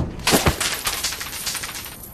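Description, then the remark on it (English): Bags of money spill out in a sudden clattering rush after shifting when the driver slammed on the brakes. A heavy metallic burst of coins is followed by a long scatter of bright, overlapping jingles and clinks that slowly thin out. “The bags must have shifted when you slammed on the brakes.”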